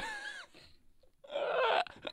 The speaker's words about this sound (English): Oh, look, mate, I've forgotten what I was saying. That sneeze took it away from me.